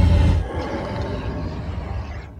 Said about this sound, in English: Here's a dragon. Now this one is bassy. Headphone users, prepare yourself.